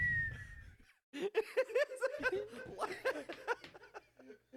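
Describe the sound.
A person whistles a short, thin, downward-gliding note imitating an eagle's cry, then breaks into loud chuckling laughter that fills the rest of the moment.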